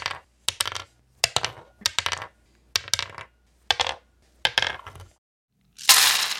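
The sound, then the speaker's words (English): Hit dice clatter across a hard table, rolled one at a time in a series of about seven quick, separate rolls, each a short burst of bouncing clicks, ending with a louder, longer rattling tumble. No voices. “You can roll them one at a time until you get to your maximum.”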